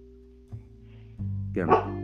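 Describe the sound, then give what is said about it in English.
A female dog, asleep and having a nightmare, lets out a few soft, muffled woofs ending in a short, higher yip as she barks in her sleep, over a low steady hum. “I think she's having like a nightmare or something, because she's like asleep and barking in her sleep.”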